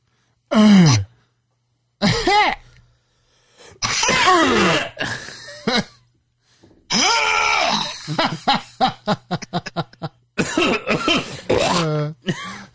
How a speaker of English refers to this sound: Different sounds of coughs.